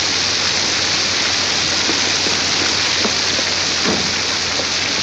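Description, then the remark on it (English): Heavy rain pours down in a steady, dense roar that fills the whole clip, with occasional sharper drips and splashes standing out from the wash. No voices are heard. “Gee, I'm sorry I didn't hear you in all this rain.”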